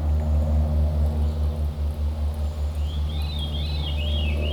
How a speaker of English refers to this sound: It was a goddamn plane. You hear that?